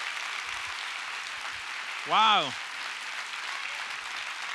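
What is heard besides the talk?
audience applause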